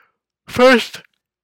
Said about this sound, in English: First yawn of the podcast. I swear. So, okay, funny. I'm starting to track my yawns.